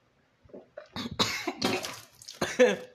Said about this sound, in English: Fuck. I just choked with water.